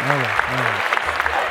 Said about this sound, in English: Absolutely. Clap that up.